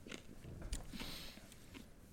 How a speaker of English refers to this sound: All right. Take a sip. All right, drink it down. Suck it down, you hick.